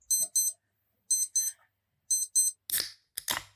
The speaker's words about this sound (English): Clock goes off for his first drink.